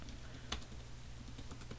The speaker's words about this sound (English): But this is my MacBook, so I'm actually texting someone back. You might be able to hear the typing.